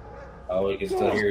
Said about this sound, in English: Oh, we can still hear his dog.